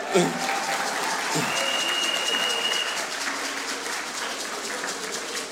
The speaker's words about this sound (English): As you know, I've done it in different departments, but coming to a Sunday service to preach, I've not done it. So clap for me too.